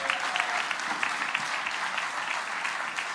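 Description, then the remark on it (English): Sustained audience applause welcoming a speaker, a dense, steady patter of many hands clapping at an even loudness throughout, with no voices standing out. “Now we're going to really, really clap, and we're going to welcome Guy to come and speak to us.”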